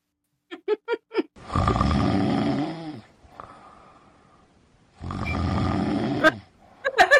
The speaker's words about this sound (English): I can't get this one. It says snoring with whistle. It won't do it.